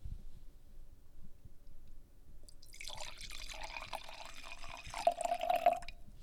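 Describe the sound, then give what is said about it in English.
Wine pours steadily into a glass for a few seconds, a bright splashing that rises slightly in pitch as the glass fills, with no talking. “I don't really know if I've poured myself many glasses of wine.”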